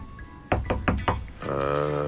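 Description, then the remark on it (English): Four quick, evenly spaced knocks on a door, fairly soft, followed by a steady sustained tone that carries on to the end. “Yeah, it's a subtle one. So who's that at the door?”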